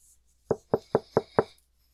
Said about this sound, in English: Knock, knock. Coming. He opens the door.